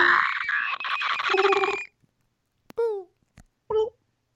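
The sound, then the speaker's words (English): A voice imitates a raptor dinosaur: a long, harsh, rasping screech for nearly two seconds, then a pause followed by a few short, sharp chirping shrieks with falling pitch. “I'm doing a raptor.”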